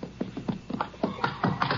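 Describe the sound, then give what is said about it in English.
Horses are ridden into sheds beside a house, their hooves making a steady run of soft, muffled clops about four per second, fairly quiet and with no talking over them. “Ride right into the sheds. Leave the horses there.”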